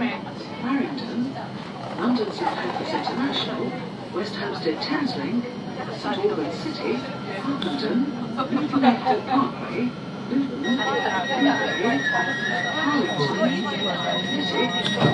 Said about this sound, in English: What do you think of the sound of the train doors?